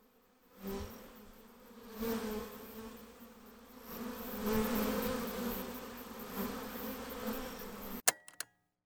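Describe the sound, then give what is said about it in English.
A bee buzzes steadily for several seconds, its drone swelling and fading, then a couple of sharp clicks end the sound abruptly. “Buzzing off.”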